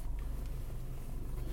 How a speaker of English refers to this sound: Starting up the car.